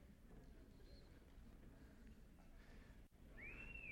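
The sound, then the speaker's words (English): A person in the audience whistles: a short, bright whistle rises and holds near the end, cutting through a steady murmur of crowd noise; a fainter, briefer whistle note appears earlier. “He's whistling, all right?”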